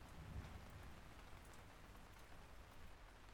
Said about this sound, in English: Finn's jacket was worse than useless in the driving rain.